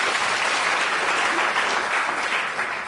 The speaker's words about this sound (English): So without ado, I'd like to say welcome. Thank you so much for coming to introduce this book. If you could give them a great round of applause.